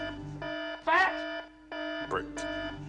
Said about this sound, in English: Listen to the break alarm.